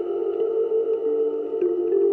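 Bright, metallic bell-like tones from plucked metal keys, filtered and run through delay and reverb, blur into a steady shimmering wash, with echoing delay and reverb smearing each note into the next as the pitch shifts a few times; no one speaks.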